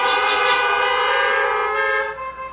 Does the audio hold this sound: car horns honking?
yes